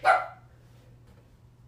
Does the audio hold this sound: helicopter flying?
no